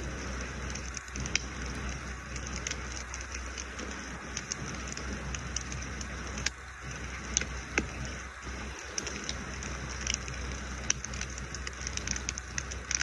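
A mountainside campfire crackles steadily on the second night of a trip, with frequent sharp pops and snaps over a constant hissing bed of noise. No one speaks, and the fire sounds moderately loud throughout.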